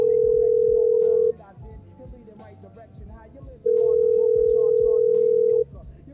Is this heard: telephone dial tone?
yes